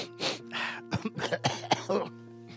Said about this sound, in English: You all right? You gonna cough again?